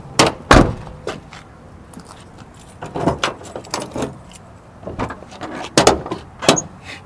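A small Honda car's door being opened, with a couple of sharp latch clunks followed by a run of lighter rattling clicks and knocks; no one speaks.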